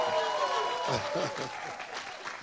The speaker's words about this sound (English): Stand up. Come on. Give her a round of applause because she don't want to stand up.